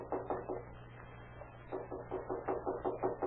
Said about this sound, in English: a feeble knock is heard at the door.